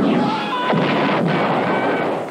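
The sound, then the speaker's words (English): Dense effects from the Star Wars arcade game: booming explosions and sweeping laser zaps pile up in a loud, continuous barrage with no pauses, harsh throughout. “In a galaxy of video games, there is only one, Star Wars, the arcade game.”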